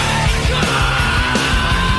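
A rock singer yells forcefully over a loud, dense band with distorted guitars and driving drums, the shouted vocal sitting up front in a brief, aggressive burst of song.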